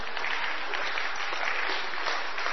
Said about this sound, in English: May I ask Moses to come forward, please? With the staff. Can we give a clap for Moses, please?